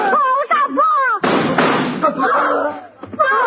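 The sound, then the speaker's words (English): A single loud gunshot that kills a man bursts out with a harsh, noisy crack that trails off, cutting between stretches of a person's anguished wailing and moaning. “You shot my father.”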